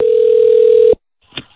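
A telephone ring tone sounds once as a steady electronic beep lasting about a second, then cuts off into silence before a brief faint click, as the government calls an elderly man at home.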